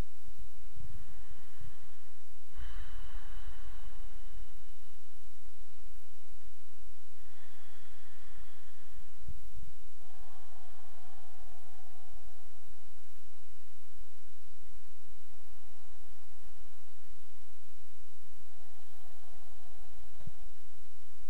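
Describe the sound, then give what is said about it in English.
Slow, audible Ujjayi breaths drawn in and pushed out through the nose against a constricted throat, a soft ocean-like hiss repeating about six times in a steady rhythm, alone without any talking. “And gently just continue breathing in and out through the nose as you pull the breath in on the inhale and gently push the breath out on the exhale against this resistance. You'll create a soothing sound like the sound of the ocean waves.”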